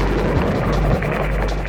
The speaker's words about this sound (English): And then I cut the light off, and I heard the airplane come over, and he was gone.